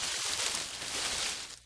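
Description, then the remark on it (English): A voice imitates wind rustling through palm fronds with a steady, breathy hiss, bright and textured with faint ticking crackles, holding evenly before trailing off at the end. “As well as, have you ever heard the sound of winds as the wind as it's moving through, like, palm fronds?”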